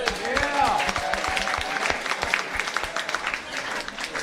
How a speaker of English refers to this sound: So if we can get a quick round of applause for BFast TV, please.